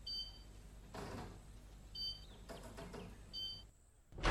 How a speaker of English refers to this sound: You put the code in, and the door doesn't unlock.